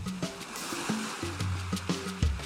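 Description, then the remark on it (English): A steady hiss of surf washing in soft swells, with a few low, stepped musical tones sounding over the rushing water. “Imagine you're on a beach.”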